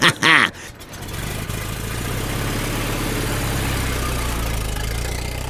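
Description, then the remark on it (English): A car engine cranks and starts with a brief rising whine, then settles into a steady, low rumble that holds for several seconds as it pulls off. “Yes, get in the car and drive away.”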